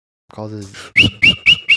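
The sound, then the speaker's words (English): A person whistles loudly, four sharp, piercing blasts in quick, even succession, just after a brief low vocal sound. “Well, what's up with whistling indoors? It just calls the devil.”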